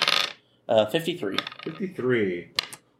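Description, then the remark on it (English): Dice for a D66 roll clatter and rattle briefly against a hard surface, followed by a stretch of people talking and one sharp click near the end. “Go ahead and give me a D66 roll.”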